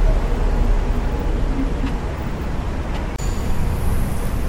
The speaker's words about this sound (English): What's going on with this bus? It's like, this tour bus is like jerking forward bit by bit. What's going on? There's the tour guide on top of the bus. Big bus tours. Tour in New York City.